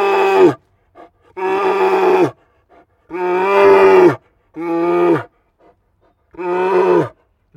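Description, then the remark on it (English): A voice imitates a grizzly bear roaring: five loud, drawn-out, throaty bellows, each about a second long and separated by brief pauses. “And it's just standing there, and it's a happy bear jumping around like a little baby going, and it's just roaring at you, and it was”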